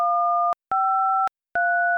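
Three touch-tone telephone keypad beeps, entering the first three letters of a movie title, each a steady two-note chord lasting about half a second, separated by short silent gaps, with the pitch pair shifting slightly from one press to the next.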